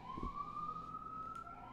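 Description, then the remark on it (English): An emergency vehicle siren holds a steady, slowly rising wail outside in New York, over a low rumble of street traffic. No one speaks. “Oh my god, I hear a siren.”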